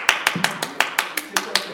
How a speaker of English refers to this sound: Have you ever seen on television or something like that when they really applauded someone for something that was so good and then they did something else when they gave them a second applause?